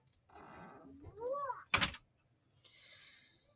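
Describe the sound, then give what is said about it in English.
A brief voice rises, then a door shuts with one sharp, loud thud, followed by a soft, airy rattle as it settles. “Will you close the door, please, sweetie?”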